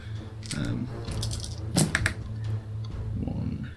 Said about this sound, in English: Yes, you can roll defense, great. Please. So I roll 9 dice.